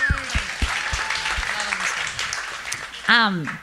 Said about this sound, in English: Yep, we can. You can clap. You can give her a hand.